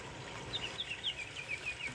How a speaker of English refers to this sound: Just imagining yourself as you hear and listen to that beautiful river and stream and the birds chirping, just transporting yourself to a beautiful place in nature.